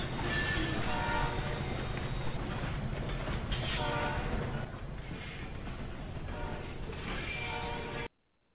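A loud, continuous roar of a train rumbling and grinding along the tracks, with harsh screeching metallic tones layered over heavy low clatter, sounding chaotic and wreck-like before cutting off abruptly.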